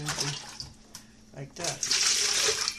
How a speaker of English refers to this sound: Elizabeth Panashaway's drinking water sloshing around in a beef bucket.